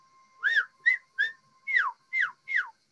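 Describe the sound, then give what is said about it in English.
A person whistles an imitation of a bird heard outside a few days earlier as spring arrives: six bright notes, the first three arching up and down, the last three sliding sharply downward, over a faint steady hum with no talking. “Just a few days ago here, I heard one was out and he's going.”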